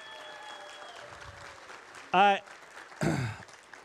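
An audience applauds in a steady, soft wash of clapping, with two short, loud vocal whoops of cheering rising above it, the second sliding downward in pitch.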